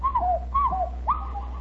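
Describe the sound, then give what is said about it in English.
Hollow hand-whistled notes imitating a cuckoo, made by a man holding his left hand with his right hand over it and both thumbs held up, repeated three times as two-note falling calls, each high then lower. Moderately loud over a steady low hum, with no talking. “I said, That's a cuckoo bird.”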